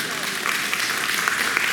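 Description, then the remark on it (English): An audience claps in response to a personal story, a steady, dense patter of many hands, a continuous crackling wash at even loudness throughout the short stretch, with no words spoken over it. “See, and you're clapping because of my story.”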